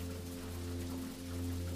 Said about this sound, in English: Together you return indoors just as the wind picks up and the rain takes a horizontal slant.